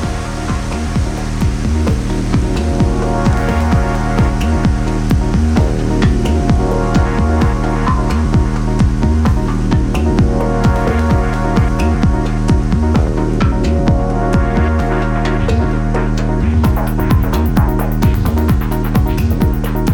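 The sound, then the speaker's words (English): Dense, steady roar of heavy rain pouring down during a storm shower, loud, a continuous wash of hissing noise with no pauses or voices. “And well, rain is pouring down.”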